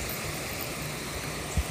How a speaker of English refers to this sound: Now we're literally passing an actual waterfall thing. Situation. So, some serious water sounds.